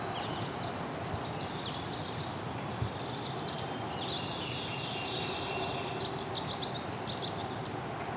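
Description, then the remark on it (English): A warbler gives thin, high calls, a drawn-out zeet alongside quick runs of zit zit zit notes, repeating steadily over a constant outdoor hiss with other birds chirping faintly. “They do the zeet, but they also do a zit zit zit kind of thing too.”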